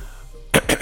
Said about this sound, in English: Excuse me, world, for clearing my throat in your ears.